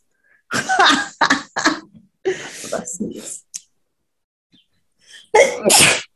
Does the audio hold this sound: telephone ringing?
no